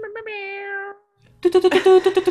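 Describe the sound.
A person does a drawn-out, nasal imitation of a cat's meow lasting about a second, followed after a short pause by a burst of loud, rhythmic voices and noise.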